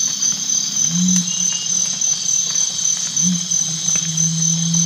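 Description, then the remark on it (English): A dense, steady chorus of crickets and cicadas buzzes continuously at night along a trail, joined twice by a recurring low-pitched hooting call, patterned like a bird call, rising and falling beneath the insect drone. “At my first stop along the trail, I hear some interesting night birds, crickets and cicadas, but there is also a recurring low-pitched sound, patterned like a bird call, but in a low register.”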